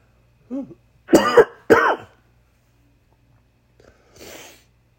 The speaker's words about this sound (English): My goodness. That was a cough right there.